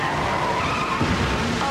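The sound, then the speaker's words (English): Car tires skid in a car wreck with a loud, sustained screech for under two seconds, a harsh squeal riding over engine rumble, dense with no speech. “After my car wreck, the insurance company didn't want to pay me one dime for my injury.”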